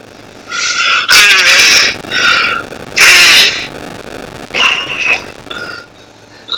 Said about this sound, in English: Sounds like you're freaking blowing into a trumpet or something. Don't know how to play it. Nah, man, you know what I'm doing. You're watching me blow my nose. I'm trying not to because I'm going to throw up.